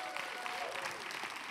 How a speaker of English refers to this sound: If you believe that, give Jesus one big round of applause.